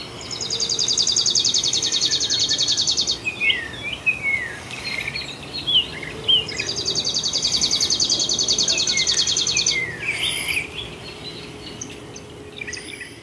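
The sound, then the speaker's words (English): Chipping sparrow song: two long, dry, rapid trills on one pitch, each lasting about three seconds, with scattered chirps from other birds in between against a steady outdoor background. “Oh my god, it's a chipping sparrow!”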